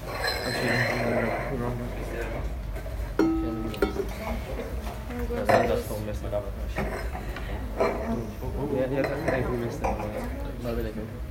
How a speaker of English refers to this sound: Okay. Okay, everyone grab a glass around me.